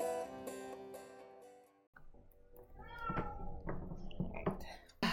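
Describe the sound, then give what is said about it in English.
A cat meows a few times in quick succession, fairly loud, following a short steady tonal passage at the start. “So loud down here. I have cats.”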